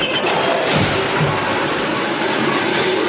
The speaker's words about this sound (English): Is it when Anthony Michael Hall as the geek walks into the garage where Molly Ringwald's sitting in the car? Yes. And he knocks over the hubcaps. Yeah. The shelf full of hubcaps.